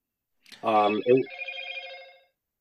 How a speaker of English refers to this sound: Are you there, bud? Phone's ringing there, dude. It just buzzed. It's all right. It was a text.